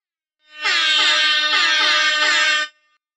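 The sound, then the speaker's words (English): A single loud air horn blast, about two seconds long, with a harsh, buzzy, wavering tone that starts abruptly and cuts off cleanly, sounding alone with no talking over it. “I will revoke your air horn privileges.”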